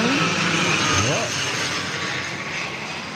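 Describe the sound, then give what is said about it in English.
A steady, broad roar of airplanes passing overhead on approach, filling the whole clip, with a couple of brief voice fragments rising over the engine noise. “There's an Edhinga that seems to be wounded, and there are planes coming in.”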